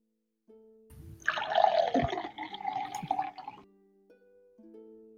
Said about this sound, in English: Pouring ourselves a nice drink.